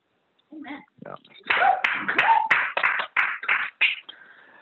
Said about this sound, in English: And it's more, yes, that is a reason to clap. That is absolutely a reason to clap.